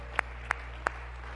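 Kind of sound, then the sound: crowd, audience clapping hands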